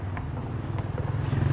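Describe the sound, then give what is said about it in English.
A steady low rumble of traffic coming in and out of the city, with engine drone that swells slightly toward the end and a few faint clicks on top. No one speaks. “So you can hear probably the noise, more traffic coming in and out of the city.”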